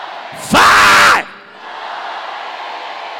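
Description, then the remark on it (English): A church audience lets out one loud, unified shout of the word "glory", lasting under a second, then settles into a steady hum of crowd noise and murmur. “Somebody shout five times glory.”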